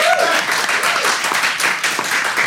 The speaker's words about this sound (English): Round of applause for Team Hawk!